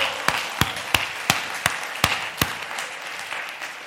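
An audience claps in praise: seven sharp, evenly timed claps in unison ring out over a steady wash of scattered applause, which lingers and fades slightly at the end.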